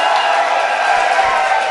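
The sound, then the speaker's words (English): A live audience claps and cheers in a steady, dense roar of applause lasting under two seconds, with scattered whoops mixed into the crowd noise. The audience is voting by applause to agree with the host's take on football player David Johnson. “Everyone that agrees with me on David Johnson, give me some applause.”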